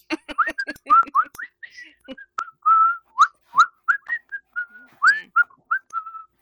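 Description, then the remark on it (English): Someone whistles a tune while washing dishes, a steady run of short, bright notes that rise and dip in pitch with brief pauses between phrases over about six seconds. “Whistling a tune that he heard last night.”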